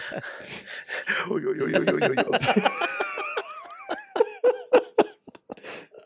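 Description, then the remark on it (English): A voice imitates strange, heavy breathing: raspy huffs and wheezy, strained sounds, then a string of short, sharp puffs, fairly loud with no words spoken. “Inosuke just like this weirdest breathing thing I've ever heard in my life”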